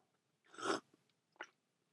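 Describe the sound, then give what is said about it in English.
A loud slurping sip of coffee, a broad noisy burst lasting about half a second, followed by a shorter, softer second sound, like a swallow or smaller sip. “I tried to sip it extra loud so you could actually hear me sipping the coffee, and thankfully I didn't inhale it down my windpipe and choke and die.”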